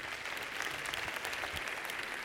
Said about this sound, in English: Give them a round of applause once again. Choir, orchestra, band, singers.